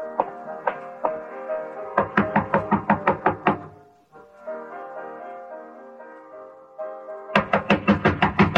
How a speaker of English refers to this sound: I waited for a few minutes after he left, and I walked up to her room and knocked on the door.